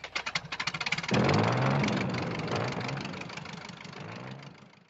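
The piston engine of a World War I Sopwith Camel biplane cranks with a rapid series of pulses, then catches and roars into a loud, rough, steady idle with a low, chugging rumble that slowly settles.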